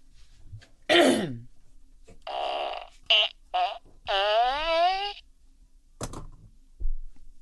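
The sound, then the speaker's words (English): A sharp burst is followed by a run of buzzy, pitched farts, a few short blips and then one long wavering one, loud, with a brief thud near the end. “Yeah, I farted.”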